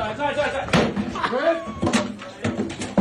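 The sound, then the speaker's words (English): An acoustic guitar is smashed against a store doorway in Albuquerque, New Mexico, by a man being dragged out, in several heavy, splintering crashes spread over a few seconds, loud, while people shout and talk over the impacts. “As they drag him out, he grabs an acoustic guitar and smashes it in the doorway.”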